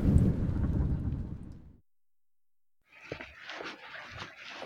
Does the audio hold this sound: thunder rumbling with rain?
yes